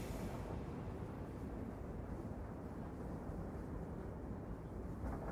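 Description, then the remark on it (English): A steady, low, muffled rumble inside a moving train cabin, loud and constant without a break, with no voices or distinct events. “You're back on the train.”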